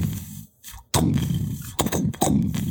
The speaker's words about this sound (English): wherever any of you may be, you can feel cannonballs just getting fired off in just random order towards the ship that is now nearing just above the peaks of Greenspire. You feel and hear some from the east and west.